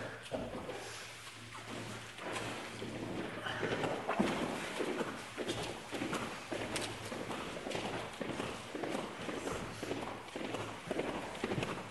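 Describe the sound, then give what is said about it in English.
Heavy clomping footsteps thud in a steady rhythm, loud, sounding much like horse hooves on a hard floor, with faint background murmur and a low hum throughout. “Sound like a horse.”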